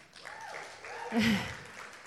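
Soft, steady applause from an audience, a dense patter of many hands that swells briefly midway before easing off, with a voice faintly audible beneath it.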